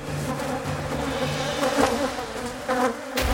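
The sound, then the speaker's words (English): A dense swarm of thousands of honeybees taking to the air from their hive to sting buzzes steadily, a thick droning hum layered with many overlapping wingbeats, swelling slightly in bursts toward the end. No voices. “Thousands of poisonous fighters take to the air with just one purpose: inject their venom as soon as possible.”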